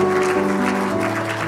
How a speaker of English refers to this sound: Let's give a hand clap a praise to Jesus. Come on, let's give them a hand clap of praise to Jesus.